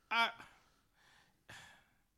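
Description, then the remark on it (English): A person at a loss for words breathes on a microphone: a short voiced gasp followed by two rough, breathy exhales, loud and very close to the microphone, with no words spoken. “Okay, that's my synergy thing, being at a loss for words and breathing on a mic and fuck reading.”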